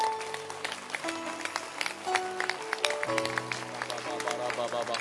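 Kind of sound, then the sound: crowd, audience clapping hands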